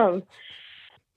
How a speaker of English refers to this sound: Here, I'll do an honorary clear my throat for you.